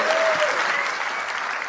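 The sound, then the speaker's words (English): A live audience at the Sugar Club in Dublin applauds steadily for Jason McAteer, Shay Gibbon and Niall Quinn, a dense wash of many hands clapping at an even, loud level throughout with no voices standing out. “Round of applause, please, for Jason McAteer, Shay Gibbon and Niall Quinn.”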